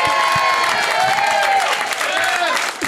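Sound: audience cheering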